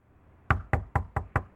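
Five sharp knocks on a door in a steady, quick rhythm, each a loud thud with a woody ring, after a brief quiet moment.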